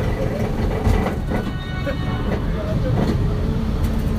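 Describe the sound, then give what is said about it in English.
A studio tour tram rolls steadily along, making a turn as it loops around a lake, its low engine and wheel rumble filling the scene with a few faint clatters, while indistinct voices murmur faintly underneath. “As we make the turn, look to your right, watch the shark.”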